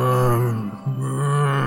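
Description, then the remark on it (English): Low, drawn-out moaning of zombies at a door: a sustained guttural groan that briefly dips and breaks, then swells again into a second long, steady moan. No speech, just the eerie voiced drone. “Behind you, you hear some scrabbling at the door, and you hear the moan of the zombies.”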